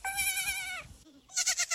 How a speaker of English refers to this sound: Yes, goat as in goat.